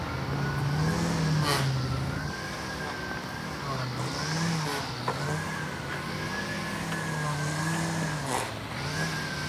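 A small motor whines steadily nearby, its pitch rising and dipping in repeated surges like a weed whacker or little gas engine being throttled, with faint background noise throughout.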